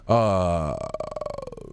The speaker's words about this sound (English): Yeah, I like how you burp straight into the mic and then right you talk too. Away from it. Yeah, I'm going to talk over here, but I'm going to burp right into it.